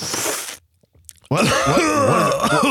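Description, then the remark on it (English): A person coughs hard after a hit from a large marijuana bong: a harsh, breathy burst, a brief silence, then a loud, strained fit of raspy coughing and groaning that wavers in pitch. “You got to cough to get off, brother.”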